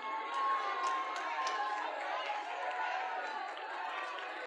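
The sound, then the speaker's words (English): A steady wash of crowd noise fills the whole stretch: many voices shouting and cheering in support of teammates during a game played in pairs, fairly loud and sustained, with occasional sharper yells poking out above the din. “Cheer and support your teammate.”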